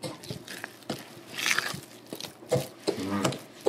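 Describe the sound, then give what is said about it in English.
Crisp, crunchy bites and chewing on homemade biscuits, a string of irregular crackly crunches with short pauses between them and no talking. “Some homemade biscuits.”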